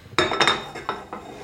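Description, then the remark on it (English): A frying pan with 1 to 2 tablespoons of oil being swirled to spread the oil, with a few metallic clanks and scrapes of the pan against the stovetop in an uneven rhythm, no voices. “But when you swirl the oil, you should be able to see it swirl, but it shouldn't be tons of oil that you're swirling.”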